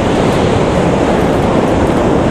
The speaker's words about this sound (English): This coast is kind of gentle in comparison to the west coast, but today the sea is really at it, which is good.